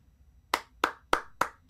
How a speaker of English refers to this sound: I don't often just give round of applause, but that right there was poetry in motion.